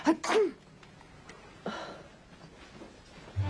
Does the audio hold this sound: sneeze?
yes